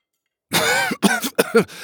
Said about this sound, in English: I coughed on my drink and it shot up through my nose. Gobbers, it burned. After several more coughs, I finally caught my breath.